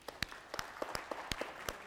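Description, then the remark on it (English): A scattered audience claps hands on command during a game of Follow the Leader, in loose, uneven bursts, sharp individual claps overlapping with no voices. “Raise your right hand. Raise your left hand. Clap.”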